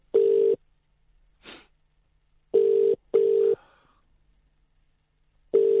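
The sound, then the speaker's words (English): An English-style phone ringback tone on an international call: steady, buzzy bursts in a short double pattern separated by long pauses, fairly loud and clear, with a brief soft rustle between rings. “That's an English ringtone.”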